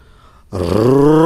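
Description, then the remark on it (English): A person reading a story aloud imitates the mommy tiger's roar with one loud, sustained, gravelly vocal growl that starts abruptly after a short quiet pause and holds steady, its pitch rising slightly until the end. “The mommy tiger roared.”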